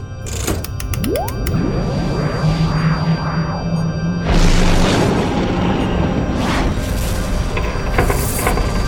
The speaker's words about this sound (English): What the hell was that? The ship fired on us. We've got some damage. Nothing major, but I better get down to the engine bay.